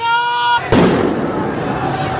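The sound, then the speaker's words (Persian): During street protests after Iran's tenth presidential election, a loud, sustained shouting of people is cut off by a single sharp gunshot, followed by a rough, noisy wash of commotion that carries on steadily to the end. “مادر کاوه از همین زیر زمین ساختمان پزشکان صدای گلوله و فریاد مردم را شنیده است”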